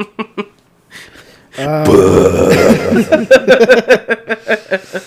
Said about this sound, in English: I just took a drink of water. Yeah, and then you burped into the mic. Okay. I was like... I was trying to avoid it, and it just happened, so let's get past it.